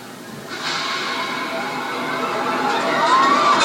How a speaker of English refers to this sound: And then someone starts screaming, and well, I'll play the clip for you, and you can kind of hear the pandemonium.